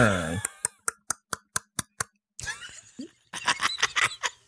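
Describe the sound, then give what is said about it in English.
A voice imitates a seabird call like that of boobies and albatrosses: a short rising vocal cry, then a quick, even run of about seven sharp clacking pulses, followed by raspy, stuttering throaty bursts. “I think boobies and albatrosses make sounds like this”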